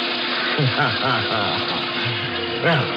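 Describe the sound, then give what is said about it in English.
A steady, rushing stream of water pours loudly from a sink faucet in a porter's closet, with a muffled voice briefly murmuring underneath the continuous flow; a man has turned it on to drench himself from head to foot. “I turned on the faucet in the sink.”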